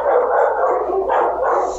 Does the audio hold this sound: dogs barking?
yes